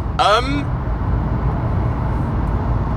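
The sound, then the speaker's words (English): A lorry carrying a big curly tube slide rumbles past, its low, steady engine drone filling the whole moment, with a brief voice-like sound over it at the very start. “Just saw a lorry drive by with a super fun happy slide on it.”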